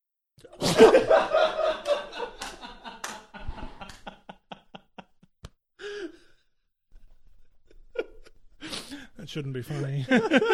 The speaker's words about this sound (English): I'm going to sneeze. Don't.